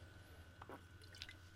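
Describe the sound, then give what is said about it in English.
A short sip of seltzer water, with a soft wet slurp followed by brief crackling bubbles, quiet over a low steady hum. “I'm sipping one of these seltzers.”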